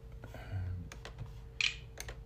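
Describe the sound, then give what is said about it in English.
Keys on a cheap, failing computer keyboard whose buttons are dying are pressed down hard and repeatedly in an uneven burst, with clacking strikes and one sharper click near the end, fairly quiet. “Y'all shouldn't have heard me mashing down and shit like that.”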